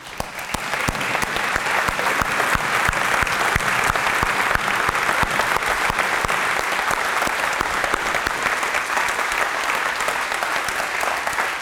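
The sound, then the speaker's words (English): Sustained applause from a large standing crowd giving recognition to Marcella, a dense, steady roar of clapping that swells in the first second and holds loud and even for over ten seconds, with no talking over it. “She doesn't serve for applause, but it's so nice to be able to give it to her because that is a picture of a life that's great.”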